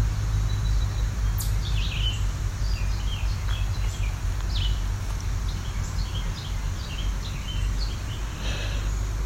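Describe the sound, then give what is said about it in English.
A chipmunk calls with a run of short, sharp chips repeated at a fairly steady pace, over a constant low rumbling background noise. “This is a chipmunk too.”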